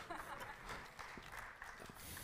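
A group of people clapping together in a steady, dense patter of applause that holds at an even level throughout, soft in tone, applauding a woman after a Bible reading.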